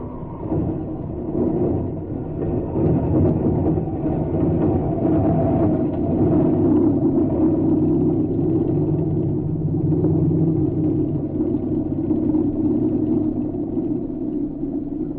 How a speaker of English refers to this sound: At about the same time, a plane came down on the field nearby.